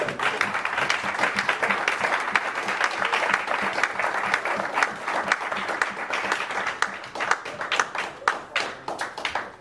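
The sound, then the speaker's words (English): Steady applause from an audience for a group of men fills the whole stretch, many hands clapping densely, with a few sharper claps standing out as it thins slightly toward the end. “That was, let's give the brothers another round of applause right there.”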